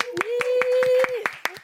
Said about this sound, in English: Thank you. You clapped yourself.